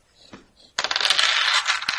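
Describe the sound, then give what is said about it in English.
After a few soft clicks, a sudden loud rattling clatter erupts and keeps going: a big handful of more than 20 dice tumbling and bouncing across a hard tabletop, with no voices. “I think you're over 20 dice now.”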